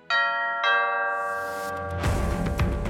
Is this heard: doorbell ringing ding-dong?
yes